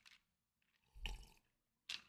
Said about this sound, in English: He took a sippy sip, y'all. This is serious.